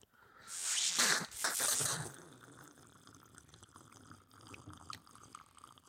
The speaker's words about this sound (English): There is grenadine, and then it has key limes in it, which is why, in part, why it's called the Ruby Key. So, ooh, and some seltzer. That's all cute. Right. Shall we slurp? Yes, let's slurp. Slurpity slurp slurp.